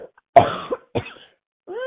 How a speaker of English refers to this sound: I'm going to cough. I'm sorry.